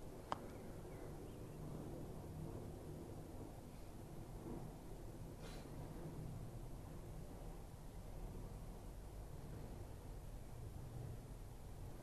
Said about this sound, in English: Planes coming from Luton Airport, going to Luton Airport. They come and go.